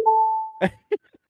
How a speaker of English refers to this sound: I'll give them a double ding.